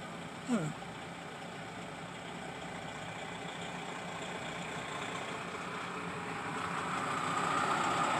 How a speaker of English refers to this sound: Hear that truck? I know you do. It says operated by Container Port Group, US dot 232734. Whatever that means. Flexi van, and it's got an alligator on the back. It looks like he's carrying a refrigerator.